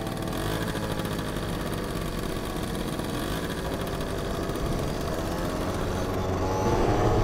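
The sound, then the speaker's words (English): A car engine runs steadily with a low, rumbling drone after a man gets into the car, then rises in pitch and intensity toward the end as the car speeds up. No voices are heard. “He's getting in the car.”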